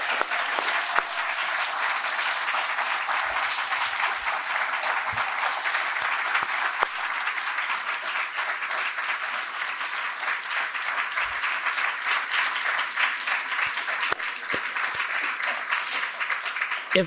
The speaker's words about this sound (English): Let's give Dr. Edwards one more big round of applause. That was amazing.